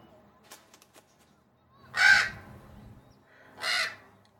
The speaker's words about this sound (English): American Crow. Phoneme currently untranslatable. Adding to localized avian phoneme database.